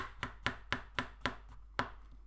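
A knife chops slightly mushy food for frying on a cutting board in a steady rhythm, about six sharp taps with a brief pause before a final one. No one speaks.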